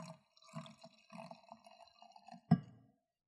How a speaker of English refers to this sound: Let me pour you a glass of wine from the Côte d'Aronne.